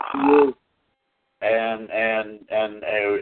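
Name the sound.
loud belch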